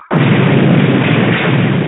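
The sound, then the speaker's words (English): A loud explosion sound effect bursts in abruptly and holds as a dense, roaring blast of noise for nearly two seconds, steady, with no voices. “All right, so we got the explosion there.”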